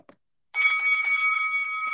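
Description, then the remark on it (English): A bell is struck three times in quick succession, then its bright metallic tone rings on steadily, sustained and fairly loud, with no one speaking over it. “I'm assuming you got that bell at the ready for us, mate.”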